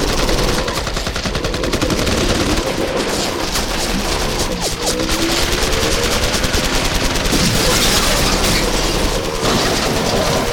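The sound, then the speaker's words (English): Loud, sustained automatic gunfire with incendiary rounds, a dense rapid rattle of shots running nonstop for about ten seconds, with brief whining tones cutting through the barrage. “Everybody go to incendiary ammo and light it up!”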